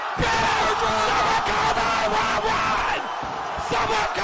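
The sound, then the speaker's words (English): A packed arena crowd of fans on their feet roars and cheers without letup, a loud, dense wall of yelling and whooping that holds steady for the whole few seconds, with no clear single voice standing out. “Listen to the fans. This crowd of the arena's on their feet.”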